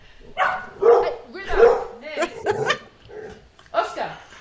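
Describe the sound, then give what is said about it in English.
Dogs bark in a household in a run of sharp, irregular bursts, fairly loud, with a few higher yips mixed in as the barking overlaps and carries on throughout. “right now, is not a moment of quiet for the dogs in Sarah's household”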